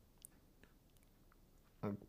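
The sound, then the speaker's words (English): Someone sips a very tart 50% juice mix of sour cherry, pomegranate and white grape, with faint wet clicks and small mouth noises over quiet background tone, then a short, loud voiced sound near the end. “Let me take a sip.”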